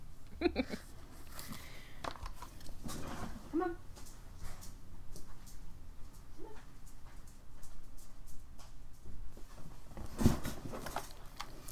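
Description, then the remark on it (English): A dog, Ned, whimpers in short, high-pitched whines that come in a few scattered bursts, fairly soft against a low, steady room background. “Ned's heard you talking about another dog. He's like, so who wants this about Ebony? I'm right here.”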